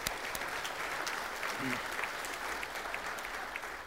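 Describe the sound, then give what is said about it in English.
An audience claps in a steady, dense round of applause lasting several seconds for a team of volunteers at an event held indoors, with many hands producing a continuous crackling patter at an even level. “I want to give them a round of applause.”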